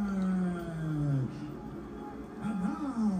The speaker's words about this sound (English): Why are they booing him?